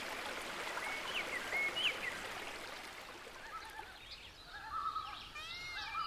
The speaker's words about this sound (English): Today, let me take you all to the dense wilderness of Ranthambore. It's daytime. The Rajasthan sun scorches our skin, but our senses are somewhat cooled by the sounds of the Banas River.